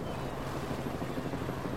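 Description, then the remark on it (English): A steady, droning helicopter rumble fills the scene over Sydney Harbour as a sailboat arrives surrounded by other boats and helicopters, constant, with a low churning wash of boats on the water underneath. No voices are heard. “She sailed into Sydney Harbour, surrounded by other boats and helicopters.”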